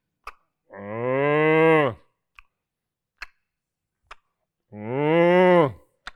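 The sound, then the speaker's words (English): A cow moos twice, each call long and drawn out with a falling tail, separated by a few soft, scattered clicks and ticks in an otherwise quiet setting. “Most of the time, they moo and they chew.”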